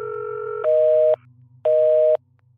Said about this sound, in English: The line was dead, indicating that Canny's phone had been switched off.